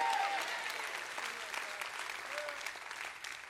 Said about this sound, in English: Anybody want to clap for that? I just feel like clapping again for that. That deserves an extra applause.